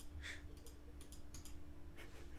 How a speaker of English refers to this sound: All right, here we go. Rolling the dice. Maybe. Maybe Slowly. Rolling the dice.